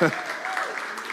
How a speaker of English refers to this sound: I should applaud you for putting up with me for 7 years instead of you applauding me. I do appreciate that, though, seriously.